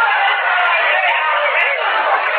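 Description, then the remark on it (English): A crowd of bird lovers rushing out: a dense, steady wash of overlapping voices and commotion, fairly loud, holding at an even level throughout without pause. “The crowd rushed out.”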